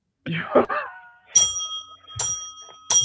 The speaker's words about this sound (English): You had the bell this whole time and you only rang it now? No, I rang it like 10 times, dummy.